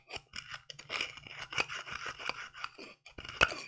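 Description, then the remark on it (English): Dried insects being crushed into powder: a steady run of gritty, crackling crunches and scrapes in an irregular rhythm, with one sharper, louder crack near the end. “I'm going to go ahead and crush them.”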